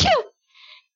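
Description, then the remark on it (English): A single sharp sneeze bursts out, followed by a brief, softer breathy rasp before silence. No one speaks. “Bless you.”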